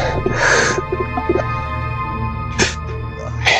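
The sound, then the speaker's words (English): Heavy, laboured breathing: one long ragged breath followed by two shorter, harsh huffs, all over a steady low droning hum. “You hear laboured breathing.”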